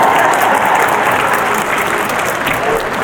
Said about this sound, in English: clap, it's the right time to clap, yeah.